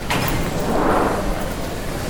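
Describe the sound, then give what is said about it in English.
The sliding doors of a Northern Line train carriage to High Barnet move with a brief whooshing hiss that swells and fades within about a second, over a steady, loud rumble of train noise. “Well, I don't want your coat to get caught in the doors.”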